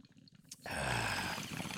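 After a brief quiet moment, a hit from a small bong starts up with a steady, loud burst of gurgling water bubbles and a rushing, airy hiss that continues to the end, taken at the same time as someone sips Buffalo Trace whiskey.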